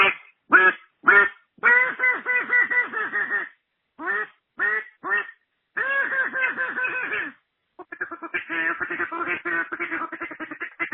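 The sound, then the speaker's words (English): A duck call quacks in loud, nasal bursts, heard on a voicemail recording: a few single quacks, then rapid runs of chattering quacks with short pauses between, with no voices. “So that was a duck call.”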